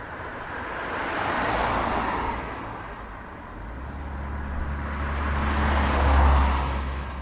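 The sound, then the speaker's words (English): Cars and trucks rumble past on the road linking Cavan with Fermanagh, two broad swells of tyre and engine noise rising and fading, with a deep low-frequency drone from a heavier truck toward the end. No voices. “Cars and trucks rumble along the road that links Cavan with Fermanagh.”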